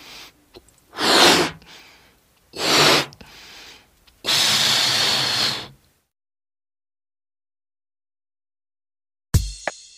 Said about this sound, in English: Mm-hmm. I am blowing up the balloon.